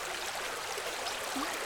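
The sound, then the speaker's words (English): A small creek, Hazard's River, flows steadily at the edge of town with a soft, continuous babbling rush, moderately quiet, with no voices or other sounds. “Hazard's River is not much more than a creek winding its way through on the edge of town”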